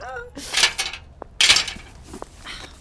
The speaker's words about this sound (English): Why I don't put my keys in the little pocket. Days of my life wasted searching in this monster bag for keys.